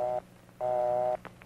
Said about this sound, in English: The busy signal, a buzz-buzz sound. When you hear this signal, hang up. Try again a little later.